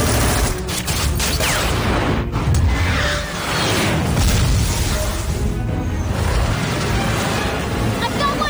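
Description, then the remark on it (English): Loud, dense gunfire from the water rattles on throughout, with sharp bursts and heavy booms layered over a constant roar of battle noise, and voices are faintly mixed in beneath the chaos. “Something's shooting at us from the water!”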